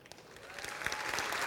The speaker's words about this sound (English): Oh, we clap better than that. That's ridiculous.